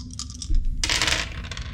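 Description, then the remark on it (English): Several dice clatter and tumble across a hard tabletop in a quick burst of rattling clicks, fairly loud, with no voices; rolled in a tabletop role-playing game to determine damage from monsters' critical attacks. “So they're, I'm not even going to tell you how many dice I'm about to roll.”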